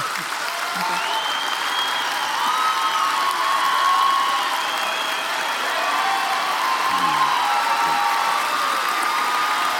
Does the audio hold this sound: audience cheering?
yes